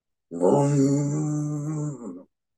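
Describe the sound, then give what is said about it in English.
A fin whale call: one long, low moan held at a steady pitch for about two seconds, rich with buzzy overtones and a faint high whistle above, loud and alone. “Fin whales make long calls here to keep in touch with each other.”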